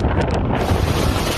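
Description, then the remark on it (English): Violent wind of Hurricane Ian making landfall in Florida, with 155 mph winds, roars without letup, a dense, buffeting rumble pounding the microphone with gusty surges, loud, with no voices. “The wind continues to ramp up.”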